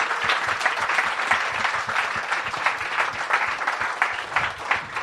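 Audience applause fills the whole stretch, a steady, dense patter of many hands clapping at once, fairly loud and even throughout with no voices standing out.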